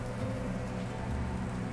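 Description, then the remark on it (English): Garlic sizzles steadily in hot olive oil in a pan, a dense, even crackle that sounds almost like rain on a surface, with no pauses and no voices. “Garlic and olive oil in the hot pan.”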